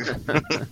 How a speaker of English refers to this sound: Is that what that wind was? Okay. Yeah. No, that was a fart.